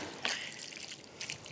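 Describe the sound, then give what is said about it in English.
A short splash of liquid poured into a mixing bowl of spaghetti mixture, with a soft hissing trickle and a second brief gush near the end, quiet, no voices. “Okay, now this is where I check the consistency, and it does look like it needs a little more liquid.”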